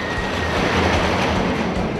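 A loud, steady rumble of a roller coaster train running along its track, with rattling wheel noise and a faint high whine throughout, with no voices.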